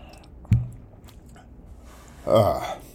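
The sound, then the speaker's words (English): A quiet sip of whiskey, followed a couple of seconds later by a louder swallow and a breathy exhale, with no talking. “I'm gonna take a sip of whiskey.”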